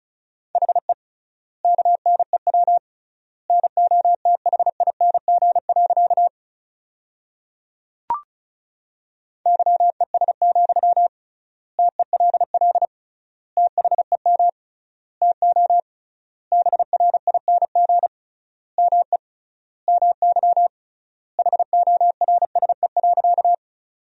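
Rapid Morse code at 35 words per minute with triple word spacing, sending sentences built from the 500 most common words: a steady mid-pitched tone keyed into quick dots and dashes, in short word groups separated by longer silent gaps, with a single faint click partway through.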